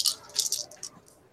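Several dice, rolled for a psyche roll in a game, clatter and tumble across a hard surface, a quick series of bright, rattling clicks that bunch up, then trail off into a faint last skitter. No one speaks.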